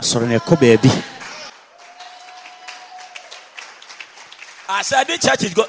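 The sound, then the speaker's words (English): A church audience claps in a steady, moderately loud patter for a few seconds during prayer at noon, with a man speaking just before and after the applause, and a faint sustained tone beneath the clapping. “May the Lord bless all those who believe it and they are clapping.”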